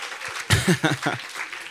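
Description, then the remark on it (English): An audience claps its hands in a morning church gathering, a dense, crackling wash of applause, while a voice briefly speaks or calls out over it partway through. “If you're awake, clap your hands for me this morning.”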